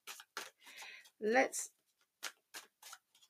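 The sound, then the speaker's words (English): Quiet papery riffles and taps of tarot cards being shuffled in short irregular bursts, with a brief murmured voice sound partway through. “I am just finishing up shuffling.”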